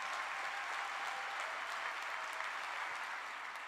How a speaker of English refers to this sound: So can we please give JSConf a round of applause as well?